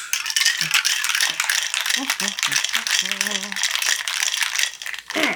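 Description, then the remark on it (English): A cocktail shaker holding a green tiki drink made with 2 ounces of Jameson Irish whiskey rattles hard and continuously, ice clattering in a dense, bright churn for several seconds, with a few brief low voiced murmurs poking through midway. “2 ounces of Jameson, and then shake that and add it to a glass.”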